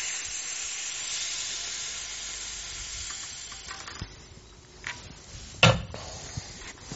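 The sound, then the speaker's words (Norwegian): Air hisses steadily out of a bicycle inner tube just punctured on purpose with a screw, for about four seconds, then fades, followed by a few soft clicks and one sharp knock. “Der, punkterte jeg.”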